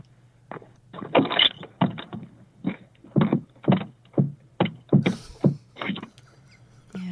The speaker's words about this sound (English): So where's the proof that the door is jammed? I'm going to put myself on speaker. Okay. We're going to hear a door shut.